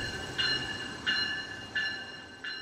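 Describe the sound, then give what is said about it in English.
A commuter train on the rails in the Woodlawn neighborhood, with a low continuous rumble beneath four evenly spaced, ringing metallic tones that repeat in a steady rhythm. No one speaks. “Webb at Illinois River Correctional Center, who grew up close to a train in the Woodlawn neighborhood. It was a sound that comforted him.”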